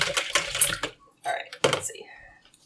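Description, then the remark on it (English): A spoon scrapes and clinks around inside a bowl of wet mixture made with water, stirred in a few quick, uneven bursts, fairly loud, with brief pauses between strokes. “Well, let me give it another good stir here.”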